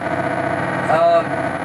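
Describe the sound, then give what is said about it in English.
A steady, continuous engine thrum from a car in a video game, accelerating as the player uses only a joystick, drones throughout at a constant level, with a brief rising whine lifting over it midway. “The ever-present engine thrum is really annoying.”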